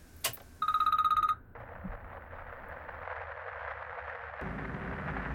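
A telephone rings with an incoming call from an old phone number in a single rapid, trilling burst lasting under a second, followed by a steady wash of rumbling, static-like noise with no voices.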